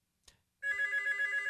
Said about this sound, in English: The phone is ringing again. This is quite fun.